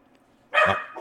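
dogs barking excitedly

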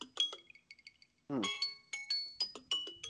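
timer going off

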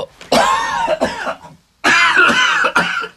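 coughing

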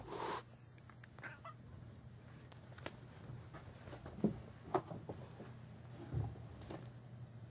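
cat vocalizing

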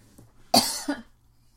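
coughing

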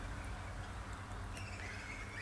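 bird song

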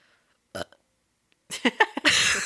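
burp

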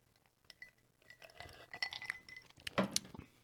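whiskey glasses clinking

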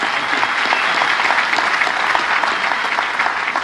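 audience round of applause

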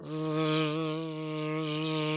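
bees buzzing

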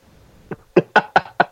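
knocking on a door

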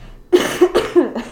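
cough

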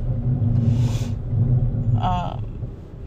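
car driving

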